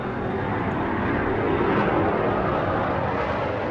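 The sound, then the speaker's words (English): A deep, steady rumble of thunder rolls on without a break, loud and broad with a heavy low-end roar. No one speaks. “Rainbow Chaser's words are interrupted by the rumble of thunder surrounding them.”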